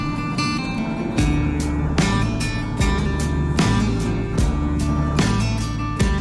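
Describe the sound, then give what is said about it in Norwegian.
A snowplow truck rumbles steadily as it drives along a snowy motorway toward Randaberg on a day of heavy snowfall, with regular scraping thumps recurring roughly every second. No voices are heard. “Da skal vi ta en liten tur med deg I bilen, føler jeg.”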